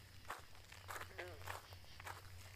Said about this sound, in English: Footsteps. People were coming.